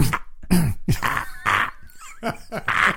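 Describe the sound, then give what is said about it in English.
A person vocally imitates a man's nasal, snorting throat-clearing cough, a tell of his stress, repeating it in a string of short bursts with brief pauses between them. “It's almost like a cough, but it's north of the nose.”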